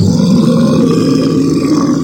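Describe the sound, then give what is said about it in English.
A voice imitates a blender with a steady, loud, gravelly low drone that whirs on without a break for about two seconds, rough and buzzing like a motor grinding. “I just did the best imitation of a blender I could.”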